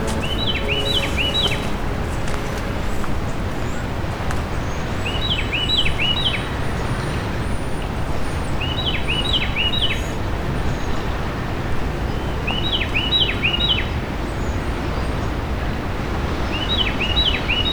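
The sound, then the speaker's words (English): A Carolina wren sings loud, rolling phrases of quick repeated notes, a little brighter sounding than usual, each burst about a second long and recurring every three to four seconds over a constant low rushing roar of waves. “Carolina Wren”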